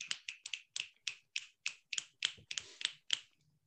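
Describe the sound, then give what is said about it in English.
A rapid run of about twelve sharp finger snaps, crisp and bright, coming in a quick, slightly uneven rhythm with no voices, jazz-club-style snapping offered in place of applause. “Sir, it's clicks. I can't click my fingers.”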